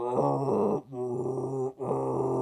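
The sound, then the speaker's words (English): Eerie, sustained groaning wails from the screaming faces of the forest stage in the video game Mortal Kombat 2: three long moaning cries separated by two brief breaks, steady and fairly loud, with no speech. “The Mortal Kombat 2 had a stage where it was the forest, and the forest had faces of people screaming.”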